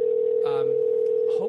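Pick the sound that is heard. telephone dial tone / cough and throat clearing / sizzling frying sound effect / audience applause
telephone dial tone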